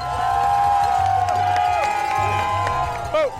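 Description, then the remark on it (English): A dense crowd of spectators at a cycling road race cheers and roars continuously as the riders come through, some on friends' shoulders and up in trees, with whistles and shouts rising above the din, loud, as a pulsing low hum passes through beneath. “The crowd swells. People scramble to get a view.”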